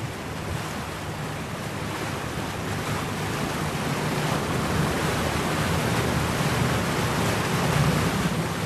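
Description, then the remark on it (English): A boat pulls out from a river onto an open lake, its low engine hum beneath a constant rush of wash, spray and wind noise that swells slightly toward the end. No one speaks. “The boat pulls out onto the river and then out onto the open lake.”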